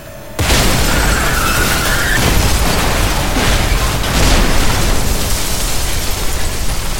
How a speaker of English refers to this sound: The hot rod from hell detonated upon impact against the other metal monster, fire and force crashing through halls and blasting apart walls.